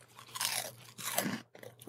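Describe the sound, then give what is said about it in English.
Two loud, bristly bursts of crunching as an orange, ring-shaped cheese snack resembling a calamari ring is bitten and chewed, separated by a brief pause, with a softer crunch trailing at the end. No one speaks. “If a calamari was made out of Cheetos and tasted like perfection.”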